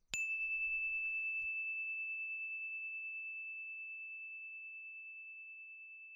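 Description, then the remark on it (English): A single story bell ding, rung as a signal before a story, rings out clearly with a sharp strike, then sustains a pure, steady tone that fades very slowly over several seconds. No one speaks. “Here comes the story bell.”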